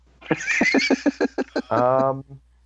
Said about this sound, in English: Because he's got a spooked horse.